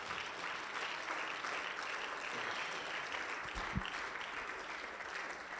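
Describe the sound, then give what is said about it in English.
A seated audience at a church service claps hands unto the Lord in steady, dense applause, a continuous wash of many overlapping claps that holds at an even loudness throughout, with no voices standing out. “And everybody said, in Jesus' name, why don't you clap your hands unto the Lord as you're seated.”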